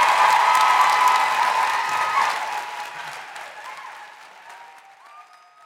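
A crowd applauds with dense, steady clapping that starts loud and gradually fades over several seconds, thinning out toward the end as a faint tone lingers.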